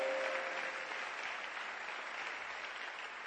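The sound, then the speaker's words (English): A crowd applauds for the man projecting the scriptures, with steady, dense clapping that fills the whole clip, loud at the start and easing slightly toward the end, with no voices heard over it. “He doesn't know his work, but still clap for him.”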